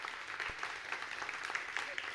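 A crowd claps steadily, a dense patter of many hands at an even level with scattered sharper claps standing out, no voices on top.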